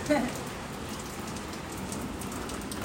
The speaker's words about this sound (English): It's raining.